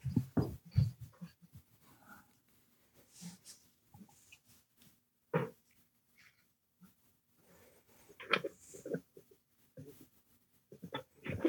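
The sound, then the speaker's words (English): A female pet dog gives a few short, scattered barks at her owner, mixed with snuffling and panting, quiet, with pauses of near silence between bursts and no one talking. “I know we've already run a little bit long here, but I'm going to grab my dog real quick because she's barking at me.”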